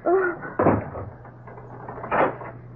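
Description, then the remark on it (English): A closet door creaks open, followed a moment later by a second wooden thud as it is shut, both sounds fairly loud. “Now get into that closet. Oh. Open the door.”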